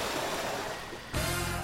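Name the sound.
river water flowing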